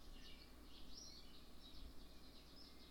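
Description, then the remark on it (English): Birds chirp repeatedly in quick bursts outdoors, with a soft steady background hiss and no one talking. “And these birds are getting better. They're getting better at chirping.”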